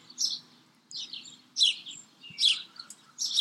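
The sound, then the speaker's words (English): Soft, repeated bird chirps come in short bursts about once a second, high-pitched, over a faint low hum with no one talking; birds around a garden with raised beds. “I have my coffee here every morning and listen to the birds. Can you hear them?”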